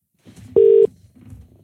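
A phone call tone while calling a friend's mobile, which goes to EE voicemail: one loud, steady electronic beep lasting a fraction of a second, rising out of a faint, muffled background murmur and then cutting off cleanly.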